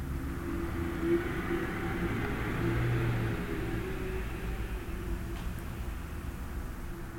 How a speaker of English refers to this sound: And we were sitting by the windows in her studio, which look out over the West Side Highway and the Hudson River. So you might hear a little bit of the traffic going on. It's always a kind of a bit of a mess out there.